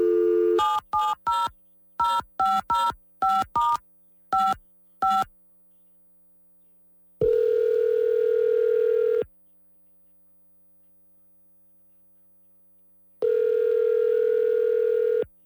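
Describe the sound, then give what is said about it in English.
A rapid series of about ten telephone keypad tones is dialed to call a man's wife, followed by two long electronic ringback tones separated by a pause of silence. No one speaks. “We got the phone number, and your wife's name is Chanel, right? So we'll go ahead and call her.”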